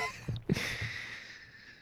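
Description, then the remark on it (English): A short throat clearing: two quick, rough guttural bursts in rapid succession, followed by a soft breathy hiss that slowly fades out. No one speaks. “It is episode 117 of season 3, and I'm here to clear my throat.”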